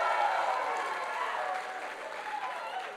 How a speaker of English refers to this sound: Come on, if you're pumped for what God's going to do at shout, I want you to give him a big clap of praise right now. Come on.